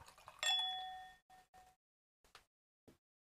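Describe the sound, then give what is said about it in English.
Red wine of the Seven Moons brand is poured into a glass, opening with a bright ringing clink of glass, then a few short lighter clinks and soft taps. Fairly quiet, with no talking. “So allow me to pour you a glass, madam.”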